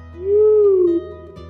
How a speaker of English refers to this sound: The sudden call of a barred owl jolted her from her peaceful moment. Cups for you? The owl hooted again.